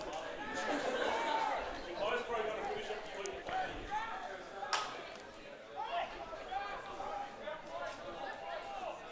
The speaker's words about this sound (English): Good crowd here for a Sunday night. Not a capacity crowd by any means, but I'd suggest over 100 here tonight. Good crowd here, making a bit of noise on a Sunday evening.